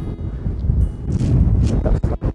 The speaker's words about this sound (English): Windy again. I hope that's not being annoying.